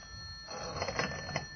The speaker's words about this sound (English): A few minutes after the grandfather clock struck 11, the telephone rang.